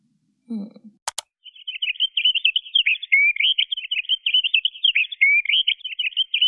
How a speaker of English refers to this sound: That was the call of a finch. That probably sounded a bit fake, and that's because it's not how we would hear this sound in nature.